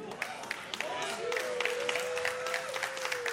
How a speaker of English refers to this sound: Man, 13 people, you clapping.